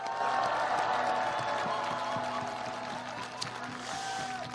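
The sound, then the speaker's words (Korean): An audience applauds steadily for several seconds to encourage people suffering harm from COVID-19 quarantine measures, a dense wash of clapping hands that stays fairly loud throughout, with faint crowd murmur underneath and no clear speech. “우리 감염돼서 고생하시는 분들, 방역 때문에 피해 입어서 고통받으시는 분들께 힘내라고 격려의 박수 한번 부탁드립니다.”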